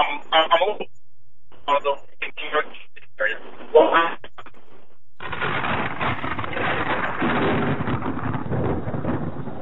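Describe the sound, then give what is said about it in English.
A voice over a narrow, tinny phone line from a caller driving on the road cuts in and out in choppy bursts with gaps of silence, then dissolves into a loud, steady wash of crackling static and distortion. “Your phone is starting to break up.”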